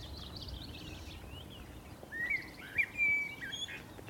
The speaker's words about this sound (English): Oh, and there's that Seti's warbler right behind us.